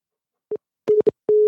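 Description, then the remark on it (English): A phone line's busy signal after a caller hung up: a short beep followed by longer steady electronic tones at one pitch, clear and fairly loud over silence, with no one speaking. “I think Tim hung up on us. Either that or he's giving us Morse code for SOS.”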